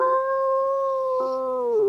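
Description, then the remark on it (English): A person imitates a werewolf howl: one long, loud, steady wail held for about two seconds, dropping and wavering in pitch at the very end. “Whoa. A mighty fine howl.”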